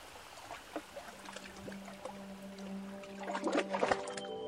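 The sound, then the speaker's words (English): Water of the Daly River flows steadily at its mouth in Wadjugan country with a soft, continuous rush, broken by small gurgles and splashes that grow busier toward the end, joined by a faint steady tonal hum. “Water flowing, birds tweeting, frogs flowing.”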